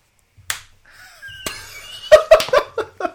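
A sharp slap rings out, another follows a moment later, then a quick flurry of four or five loud smacking hits in a row, with no voices.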